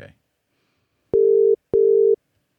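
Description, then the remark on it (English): A phone call ringing tone sounds twice in quick succession while calling someone, two steady mid-pitched buzzing bursts separated by a short gap, preceded by a brief fragment of voice at the very start. “Let's give him a call. Let's see where he's at. It's ringing.”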